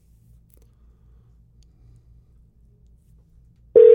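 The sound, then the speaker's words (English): Faint low hum and line noise for several seconds with no answer on a Google Voice call, then a loud, steady telephone call tone abruptly begins at the very end. “I might leave a voicemail. This phone goes to nowhere.”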